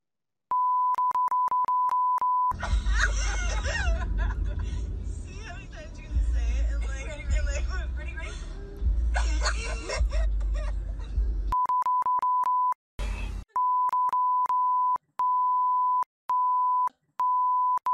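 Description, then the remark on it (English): Loud, repeated censor beeps, a steady high-pitched tone switching on and off in quick bursts, covering a racial slur said many times by a group of high school students and a mother in a video from Ohio, over noisy, overlapping voices, then chopping into short beeps near the end. “Okay, so the only thing funnier than the N-word, we beeped it so many times because that's how many times they said it, and it was blurred, but it looked like someone was twerking to it.”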